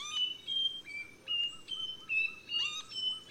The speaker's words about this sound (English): but the Nightingale Wren basically blew my mind. It's one of the most out-of-tune bird songs I've ever heard. Like a tone-deaf competitor on American Idol, this bird just whistles and whistles and whistles.